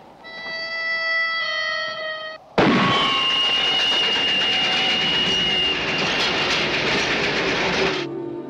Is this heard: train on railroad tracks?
yes